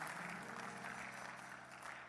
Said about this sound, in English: Come on, clap your hands and thank him.